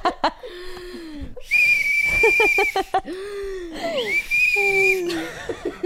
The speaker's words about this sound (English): I'm whistling because I've been taking silent deep breaths to compose myself, and you told me you needed audio. So instead, I'm just taking my deep breaths directly into the whistle.